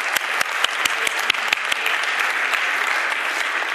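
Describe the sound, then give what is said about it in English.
An audience claps steadily for a teenage boy volunteer coming up, a dense wash of many hands with a few sharper individual claps standing out at the start, sustained at a fairly loud level throughout. “Give the young person a round of applause.”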